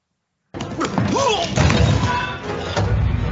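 A movie sound effect of a droid falling: loud clattering thuds and crashes tumble for about three seconds, mixed with brief warbling electronic chirps that rise and fall in pitch.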